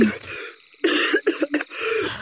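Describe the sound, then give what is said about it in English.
A loud burst of coughing and throat clearing, several rough, breathy hacks in quick succession, with a short gravelly clearing at the end. “baby, are you coughing?”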